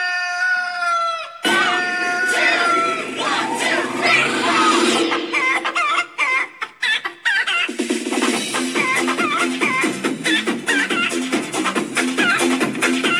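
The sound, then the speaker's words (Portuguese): A rooster crows loudly near the start, then a flock of chickens clucks and squawks busily and continuously, with some rapid repeated calls overlapping through the rest. “Isso aí, cara, as galinhas.”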